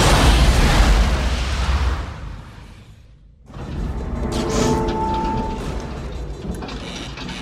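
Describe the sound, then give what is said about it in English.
A spacecraft explosion in a film scene: a heavy, roaring explosion bursts out loud and rumbles away over a couple of seconds, then a brief hush gives way to a sustained mechanical rumble with faint metallic whines. “Oh, he seems very relaxed for the explosion.”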